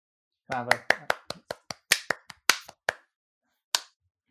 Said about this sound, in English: Thank you for that really encouraging. I've always got to have the last clap.